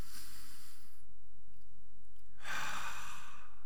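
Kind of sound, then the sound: human body sound, deep inhale and exhale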